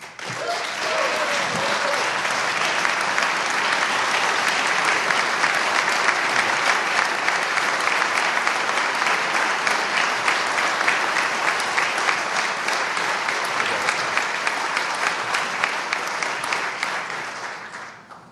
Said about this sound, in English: Well, all the Republicans stand up and clap. No Democrats stood up or clapped.